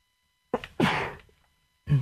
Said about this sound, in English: I'm going to sneeze. Excuse me.